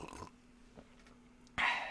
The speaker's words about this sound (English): Now, excuse me while I sip some fine Kroger coffee.